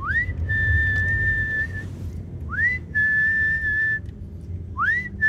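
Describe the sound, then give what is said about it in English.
A person whistles three times to call street cats, each call a quick rising note that holds steady as a long, clear tone, with pauses between, over a low outdoor rumble. “They recognise your whistle?”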